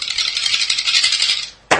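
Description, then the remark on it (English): Dice clatter and rattle across a hard tabletop for about a second and a half as they are rolled for an attack in a tabletop game, fairly loud, ending in a sharp click as they settle. No one speaks. “Well, just roll with one of them.”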